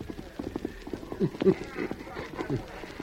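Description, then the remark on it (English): Horse hooves galloping at a quick, steady pace, the rapid clip-clop beats rolling in an uneven triple rhythm, moderately loud and continuous for a few seconds: the Lone Ranger riding his horse Silver hard to the cutoff. “The Lone Ranger rode hard to the cutoff, but from here, tracking was slow and difficult.”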